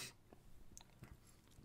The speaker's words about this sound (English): So allow me just sip a couple sips of tea here and we will officially get into this.